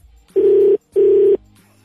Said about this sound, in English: Go ahead. Answer the phone.